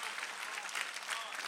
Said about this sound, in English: Come on, clap.